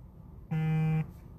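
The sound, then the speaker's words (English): A phone gives one loud, steady electronic buzz lasting about half a second. The low, harsh tone starts and stops abruptly over faint background hiss, with no talking. “Sorry, my phone. Put that on silent real quick.”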